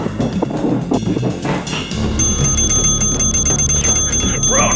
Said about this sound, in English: Yes, what's the matter? I'm ringing your bell that hard.